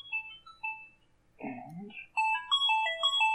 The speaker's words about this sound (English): I forgot to silence my phone. I am terribly sorry about that.